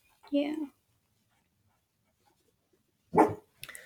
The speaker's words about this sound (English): Yeah. Whoops. Hi, Jenny. Dog interlude. Hi, Jenny. Hi, Jenny. Good girl. Good girl. Shh.